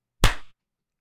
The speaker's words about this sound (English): It's just me clapping, and it's like, I hope the other two did it.